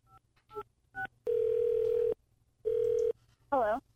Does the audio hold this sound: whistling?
no